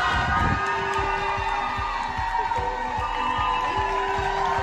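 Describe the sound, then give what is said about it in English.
Outside a hospital, a crowd of friends, family and school students cheers and shouts loudly and continuously as a man walks out after finishing chemotherapy for colon cancer. Steady horn-like tones and siren wails sound over the noise for the whole stretch. “Not only did his friends and family, but all of his students from school were all there cheering him up.”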